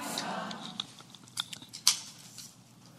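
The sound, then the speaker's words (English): Papers being shuffled on a desk, a soft continuous rustle broken by several crisp, sharp crinkles and taps, the loudest near the end, with no one speaking. “Those of you who were paying attention, I was shuffling papers around on my desk there, on our desk, I should say, because I was changing everything, the direction that I was going to go.”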